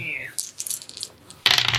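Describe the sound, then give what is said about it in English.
Dice clatter and tumble across a hard tabletop in a series of quick, bright clicks, then a louder burst of rattling as they're rolled again, fairly loud with no talking. “See them dice. Grab 3.”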